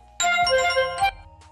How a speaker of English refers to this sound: Sorry, that was my notification.